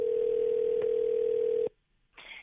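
A steady, loud phone ringback tone hums for under two seconds as hosts of the radio station New Country 1031 call a listener, then cuts off abruptly, followed by a short burst of line noise as the call connects.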